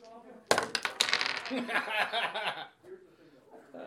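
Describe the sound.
Dice from the "Frozen in time" set, rolled with disadvantage in a tabletop game, clatter onto a hard table, a sharp burst of clicks followed by a couple of seconds of rattling tumble before settling, with faint voices around it.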